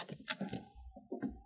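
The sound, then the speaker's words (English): A wooden cabin door is unlatched and swung open: a quick rattle of the latch, a low scraping creak, then a dull bump as it settles. No one speaks. “You might as well open it and go in, Sergeant.”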